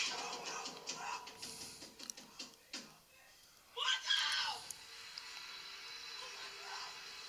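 In a horror film scene, a girl stuck at a fence lets out a sharp, high-pitched scream near the middle, loud and brief, set against a busy, noisy background with scattered clatter before and a fainter murmur after.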